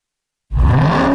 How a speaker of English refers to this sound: What do you hear? Most people just hear an engine. We hear a 6.2-liter Hemi V8 with a supercharger that accelerates so fast, it'll suck the air out of your lungs and knock you back in your seat like you're an astronaut in a rocket ship